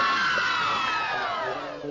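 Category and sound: sound effect, crowd cheering sound effect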